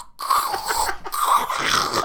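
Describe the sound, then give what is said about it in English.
A voice imitates the loud crunching of a big handful of crisps shoved into the mouth: two rough, crackly bursts of noisy mouth sound, split by a short pause, with no actual words spoken. “He used to eat crisps and he'd get a big handful and he'd shove them in his mouth and then you'd hear them all crunch down.”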